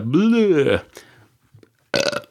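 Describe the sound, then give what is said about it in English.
A loud, drawn-out belch with a wavering, croaky pitch, followed by a brief pause, a small click and a short burst of speech. “Now, that belch, incidentally, was not part of my blur thing.”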